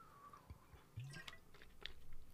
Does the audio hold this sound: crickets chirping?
no